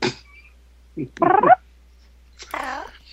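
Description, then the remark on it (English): A cat on the microphone meows, a few short, tonal cries with rising and falling pitch, separated by brief silences. “Sorry, the cat was on the microphone again.”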